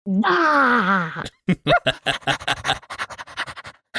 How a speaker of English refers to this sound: I don't like you panting. This sounds weird.